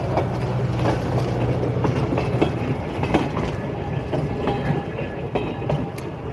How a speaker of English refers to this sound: Here comes the trolley again. I'll give him a second.